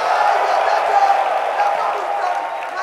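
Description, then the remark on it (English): An audience erupts in loud, sustained shouting and clapping at the end of a prayer in Jesus' name, a dense, steady roar of many voices and hands with no single voice standing out, holding at an even level throughout. “In Jesus' name, shout, clap your hands and sit down.”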